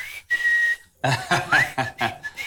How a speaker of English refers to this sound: And your wife's like, are you whistling at me? I'm not whistling at all.